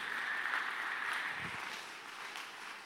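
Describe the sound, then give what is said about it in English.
An audience claps together in a steady, dense wash of applause that fills the room and holds at an even level for a few seconds, with no voices standing out. “Can I get a clap in the house?”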